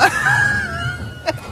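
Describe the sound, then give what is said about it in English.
The siren of a Chicago police squad car carrying Hulk Hogan across the tarmac at O'Hare Airport lets out a single loud, high wailing tone that slowly slides downward in pitch over a low engine rumble, followed by a short sharp burst near the end. “My Uber's got a siren.”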